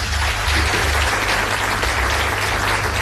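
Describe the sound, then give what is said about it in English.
A crowd applauds steadily for ANC MP Pravin Gordhan at the 50th anniversary of a civic organisation, dense clapping from many hands forming a continuous, even wash of sound with no voices over it. “Friends, please join me in a round of applause for ANC MP Pravin Gordhan.”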